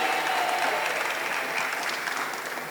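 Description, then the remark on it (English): An audience applauds steadily in response to being asked to clap if they don't employ 3 people, many hands clapping in a dense, continuous wash that holds at a fairly even level, easing off slightly toward the end, with no voices over it. “If you don't employ 3 people, clap your hands.”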